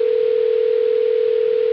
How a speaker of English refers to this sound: This is so strange. I happen to be sitting right here and the phone rang.